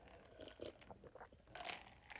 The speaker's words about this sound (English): That might have been a coffee jug. Did you guys hear that ice cubes in the cup? That's because I don't know. I just can't do hot coffee.